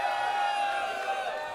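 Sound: audience booing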